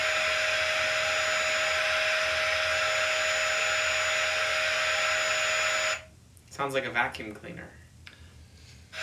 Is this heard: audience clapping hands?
no